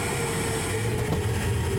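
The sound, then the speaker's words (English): A steady rush of air roars through a pneumatic tube as a delivery travels in, with a low mechanical hum underneath. The sound holds at an even loudness, with no voices. “We got to open the pneumatic tube.”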